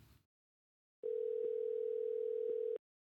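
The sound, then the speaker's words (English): A steady electronic telephone tone holds for nearly two seconds with a couple of faint clicks partway through, as a caller is added to a phone call, preceded by a short burst of noise and then silence. No one speaks. “on the phone here, and let me add him in.”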